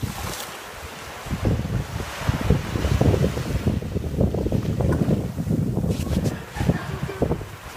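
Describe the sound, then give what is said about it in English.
A person splashes water in irregular bursts at the water's edge, with waves washing in and steady wind rushing across the microphone throughout. “So I was splashing water at him just to let him know where the water was.”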